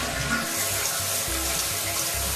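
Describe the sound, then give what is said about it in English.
A toilet flushing: a steady, loud rush of water that pours continuously for a couple of seconds, with no voices. “Well, you're about to hear the toilet flush show.”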